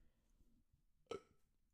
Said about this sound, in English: I got a burp.